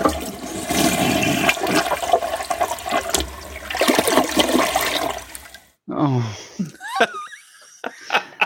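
A toilet flushes loudly, a rushing, gurgling roar lasting several seconds, then cuts off into a brief pause followed by squeaky, wheezing sounds that slide up and down in pitch.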